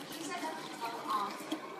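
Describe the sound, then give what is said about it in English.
Pineapple juice pours steadily from a freshly opened can for a couple of seconds, a continuous splashing and trickling sound at moderate volume, with no talking. “Save the juice.”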